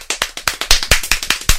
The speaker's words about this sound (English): They call it crocodile snap. It's a clap, and then you literally have to just keep doing that.